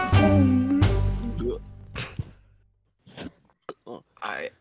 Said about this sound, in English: That gulp was weird.